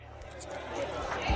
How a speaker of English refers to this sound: I was thinking, why don't we create a little bit of a bar environment here. Hey guys, can you cue the bar crowd noise?